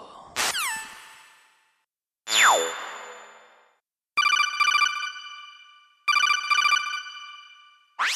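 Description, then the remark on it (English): An electronic telephone rings while calling the AAA Auto Club Helpline, with no talking: two quick tonal sweeps, one rising and one falling, then two longer buzzy ringtone bursts with a pause between, and a final rising chirp. “We'll have to call AAA. Call AAA.”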